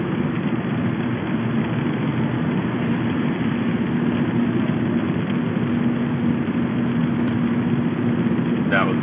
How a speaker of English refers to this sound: See if the pitch of the road noise changes as I go uphill.